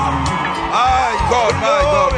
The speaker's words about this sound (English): Shout out praise to God. Somebody's scream.